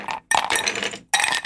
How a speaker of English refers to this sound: To make a Pimm's cup, you need Pimm's, you need some lime juice, and you need some ginger beer. It's a very simple cocktail. So this is what you do. Put some ice in a glass.